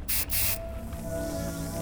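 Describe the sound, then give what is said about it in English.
Two quick bursts of hissing spray, a short one and then a slightly longer one, followed by a faint steady hum with no voices present: a medical bioseal sealant spray being applied to a cheekbone fracture. “Hold still while I apply a bioseal.”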